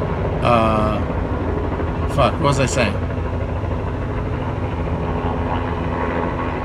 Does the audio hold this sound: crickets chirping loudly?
no